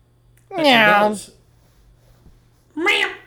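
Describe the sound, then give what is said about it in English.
An edited-in sound effect resembling a cat: two loud meow-like cries, a longer drawn-out one, a short pause, then a briefer second cry, with a faint low hum underneath and no talking. “when I edited the last one, the one that I put in sounded like a meow a little bit.”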